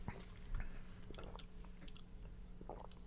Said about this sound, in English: A lot of swallowing noises going on.